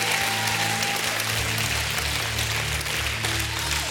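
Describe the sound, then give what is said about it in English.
A large church audience claps and shouts praise to God loudly and steadily for the whole stretch, a dense wash of hand claps and voices with sustained low keyboard or organ tones underneath. “Give him one last hand clap and shout of praise.”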